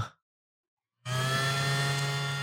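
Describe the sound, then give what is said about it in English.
A small mushroom-shaped handheld desk vacuum switches on after a brief silence and runs steadily, a loud whirring motor hum with a high whine layered over a low drone, no voices. “I got a little desk vacuum, too. It's like mushroom shaped.”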